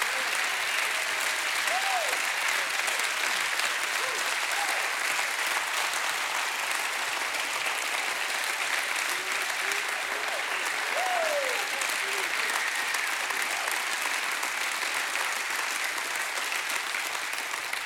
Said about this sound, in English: I lay before the Lord this morning early, and I said, I'm not here today for man's applause. So I hope that applause was for the Lord.